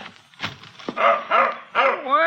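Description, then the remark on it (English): A dog outside the back door of a roadside cafe in West Texas, at 5:45 a.m., gives three loud, high-pitched yelping barks in quick succession, each rising and falling in pitch, the last one drawn out into a whine, after a few soft knocks. “Well, what's the matter, boy? Where'd you come from? Come on, feller.”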